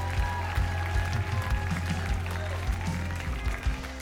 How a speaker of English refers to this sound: Now, if you receive it, give him a great big clap. Come on, come on.